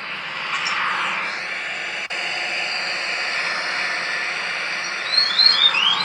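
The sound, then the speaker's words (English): An elevator alarm: a steady, loud rushing hiss fills the whole stretch, then a few quick, high chirping tones near the end, almost like a small bird twittering. No one speaks. “I have just so fucking much elevator alarm. I want to hear this.”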